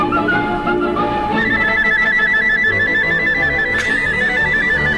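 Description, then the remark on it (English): A loud, high whistled warble from a recording played on a breakfast show, holding a steady, rapidly wavering pitch for a few seconds over a dense, rumbling musical background, ending with a sharp click. “Wait for this warble.”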